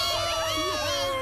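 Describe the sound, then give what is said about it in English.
A crowd cheering loudly and steadily, many overlapping voices shouting and whooping together in a continuous, bright roar lasting just over a second. “You realize you're cheering the death of millions of my children.”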